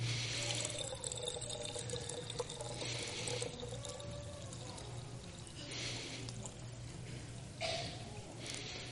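Liquid is poured into a container in a few separate splashing bursts against a low steady hum, with no one speaking.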